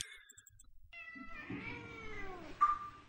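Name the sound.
cat meowing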